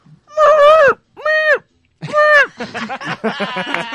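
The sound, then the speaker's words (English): A person imitates a pig with three loud, strained, wavering squeals, separated by short pauses, followed by a busier stretch of overlapping voices. “And then let's get your best peak squeal. Squeal for me, Piggy.”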